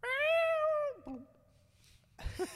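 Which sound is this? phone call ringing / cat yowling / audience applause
cat yowling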